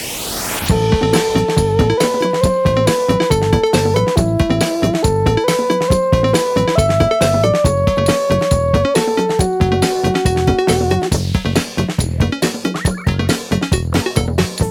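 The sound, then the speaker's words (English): A speaker frequency response test signal of steady electronic tones stepping up and down in pitch, sounded in pairs, over a constant fast rhythmic clicking pulse, used to reveal discrepancies across the full frequency range. It is loud, with no voices. “Now, we're going to give you now a simple test which will show up any of these discrepancies which may occur anywhere in the full frequency range.”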